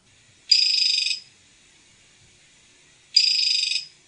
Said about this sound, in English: And it consists of, high-pitched squeaks that are mm-hmm. pretty rapid. And if you'll bear with me, I think I have an example here. We'll try to play it. This is a dart frog mating call.